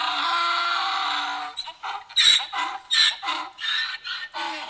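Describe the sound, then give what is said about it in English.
A man imitates a donkey's bray, evoking Balaam's donkey, holding one long raspy note before breaking into a run of loud, alternating hee-haw bursts, unaccompanied. “Sounds of a donkey.”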